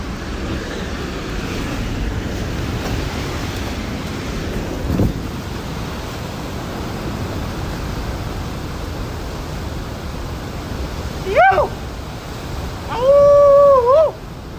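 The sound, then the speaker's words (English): A steady, rushing roar of ocean waves breaking on the shore in France fills the whole recording, with two brief, high-pitched calls cutting through near the end. “Listen to the ocean waves.”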